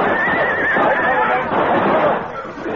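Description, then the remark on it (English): Horses whinny loudly and shrilly as they go down on a canyon floor under rifle fire, a wavering high cry through the first second over a dense, rough wash of noise that continues steadily for the rest of the moment. “Our horses went down, and the six of us were trapped in the canyon floor.”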